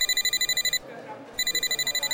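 signal or alarm, telephone ringing

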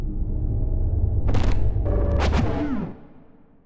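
household object, door slamming shut

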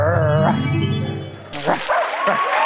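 animal, dog barking

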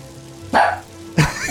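animal, dog barking

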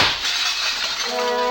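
impact, glass shattering

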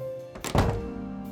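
household object, door being shut

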